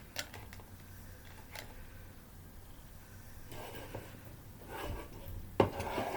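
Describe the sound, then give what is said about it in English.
A green drink being poured into a glass: a soft, steady trickle that swells in the second half, with a few light clinks of glassware and one sharper clink near the end. No one speaks. “Rate my pouring.”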